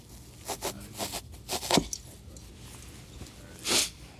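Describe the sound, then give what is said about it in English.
A series of short, raspy ratcheting clicks as a zip tie is pulled tight speeds up and grows louder over about a second, then a lone scraping burst follows after a pause. No one speaks; the sounds are fairly quiet. “Solomon said, get a zip tie”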